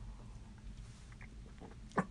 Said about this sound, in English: Let me have another sip of my coffee. Excuse me.